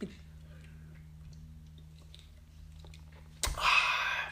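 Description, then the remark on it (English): Faint mouth clicks and small slurping sounds of someone sipping a beer over a steady low hum, ending in a sudden louder, breathy burst. “Let me get one more little sippy sip before I log off.”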